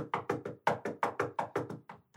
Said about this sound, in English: I know. I'll knock for both of us. Listen to how much I'm going to knock.